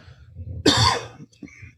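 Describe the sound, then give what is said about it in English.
A single sharp, loud cough bursts out, followed by a brief rough throat sound, with quiet room tone before and after. “Cough button. My bad.”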